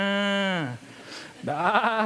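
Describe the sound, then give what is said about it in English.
A person imitates a cow's long, drawn-out moo that slides downward, then after a short pause imitates a sheep with a wavering, bleating call. Both are loud. “Can you imagine the scene? Cows and sheep.”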